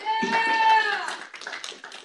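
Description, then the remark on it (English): Scattered audience applause, a dense patter of claps, follows a resident's public comment at a meeting as a raised voice speaks over it, asking for no applause. The clapping continues and thins out toward the end. “Please, no applause at this time.”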